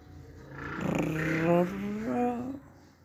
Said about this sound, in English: sorry, there's a motorbike.